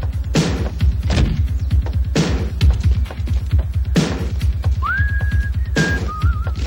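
A short whistle, from a man walking up to rob a store in a film scene, slides up and holds a steady high note, then breaks into a brief wavering trill, sitting over loud, thumping music with a heavy repeating beat.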